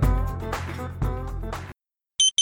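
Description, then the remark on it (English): Busy music plays, cuts to silence, then a loud, high-pitched electronic alarm-clock beep starts right at the end, shrill: a morning alarm at 5 a.m. in India. “I hate this morning alarm here.”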